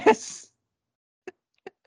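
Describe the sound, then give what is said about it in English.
A voice mimics a TIE Fighter engine with a short, harsh, rasping screech lasting about half a second, followed after a pause by three brief, clipped vocal bursts. “My TIE Fighter noise.”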